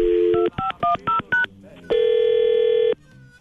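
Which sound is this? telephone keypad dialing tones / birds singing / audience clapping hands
telephone keypad dialing tones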